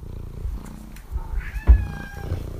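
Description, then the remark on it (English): A cat purrs in a steady, rumbling low drone, with a brief tonal meow-like trill rising over it partway through. No one speaks. “And here's my cat purring.”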